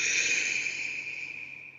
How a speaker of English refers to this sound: Take a deep breath in through your nose.